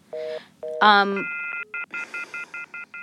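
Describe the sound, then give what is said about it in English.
A telephone call being placed to a police officer: a few electronic dial tones and a brief warbling tone, then a steady string of short, evenly spaced ringing beeps, fairly loud, with no talking. “We tried to get in touch with Officer Durfee again, but he let the phone go to voicemail”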